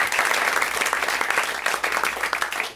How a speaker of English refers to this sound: Round of applause for all those people for their participation tonight.